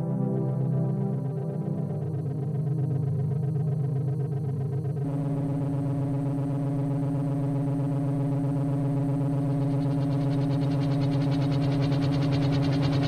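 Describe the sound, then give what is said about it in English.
A flying helicopter drones steadily and loudly with a heavy, humming tone that deepens and shifts partway through, its rotor churning on without pause. No one speaks. “A helicopter!”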